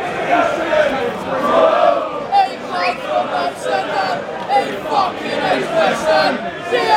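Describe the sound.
A large football stadium crowd roars and chants continuously during a Millwall throw-in about 20 minutes into the match, a dense wash of many voices swelling and surging in waves with occasional louder shouts rising out of the noise.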